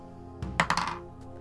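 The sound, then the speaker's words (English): Dice, rolled for a knowledge roll, drop onto a table with a soft thud, then clatter in a quick run of three or four sharp clicks that fade out, with one last faint tap. No one speaks. “Oh my god, what is wrong with this dice?”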